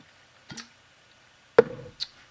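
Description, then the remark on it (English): Someone takes a sip of Angry Orchard hard cider: a soft wet slurp, then a sharp clunk with a brief ringing tone, and a final quick click, with no talking. “Let me sip this angry orchard before I do this.”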